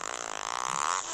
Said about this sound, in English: Now I know what my wife has to deal with. She hates hearing my farts, and I think they're funny, but now I'm on the other end.